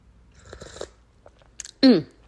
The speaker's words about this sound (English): But I'm going to take a sip of my tea.